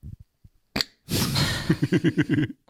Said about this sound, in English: he's taken that 90s meme and the reveal was you farting.